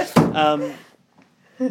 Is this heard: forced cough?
no